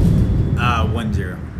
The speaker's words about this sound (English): It looks like the soccer gods are trying to chime in with an opinion with their thunder.